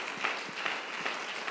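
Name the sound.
audience clapping hands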